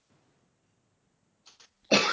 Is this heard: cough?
yes